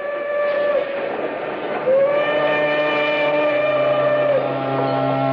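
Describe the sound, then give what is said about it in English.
A steam train of 10 cars, baggage car included, sounds its whistle as it pulls into Morris: a short blast, then a longer sustained one, over a steady rumble of the moving train. Loud, with no voices. “Made the rounds, 10 cars, baggage car included, the length of the train and back. We pulled into Morris and took on water for the engine.”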